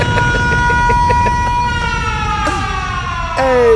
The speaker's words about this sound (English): Wait, you gonna let this siren go, motherfucker?